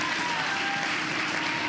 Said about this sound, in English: If you're going to clap, don't give me a petty clap.